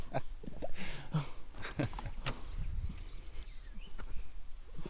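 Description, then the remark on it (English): A bird trapped inside a building gives a quick run of about six thin, high chirps, faint against a background of shuffling and soft thumps, followed by a few scattered higher peeps. “Oh, it has a bird in it, too.”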